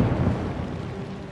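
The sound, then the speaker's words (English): An explosion in the distance, coming from an old mine, rolls out as a deep, steady rumble, heavy in the low end and lasting over a second without fading much, with no voices present. “Later that day, Thomas and Yong Bao were at Cannonball Curve when they heard what sounded like an explosion in the distance.”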